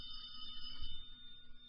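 A telephone rings with a steady, high metallic bell trill that carries unbroken through the whole moment, with no voices over it.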